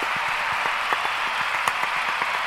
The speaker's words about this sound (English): That deserves a round of applause for that. Just for that.